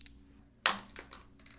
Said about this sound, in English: Oh, and for those listening, you special Patreon listeners, you get to hear the debut of my first pair of physical dice. Ooh. I am no longer using randomdice.org. You're going to hear all the sounds, baby.